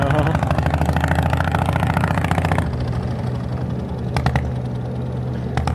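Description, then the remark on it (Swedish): The loud engine of a smoky green boat idles in a harbor in Turkey with a steady low rumble and rapid chugging pulses, easing slightly in intensity partway through while continuing to drone. “Nu får vi sällskap av Turkiets mest högljudda och mest rökiga båt här i hamnen också.”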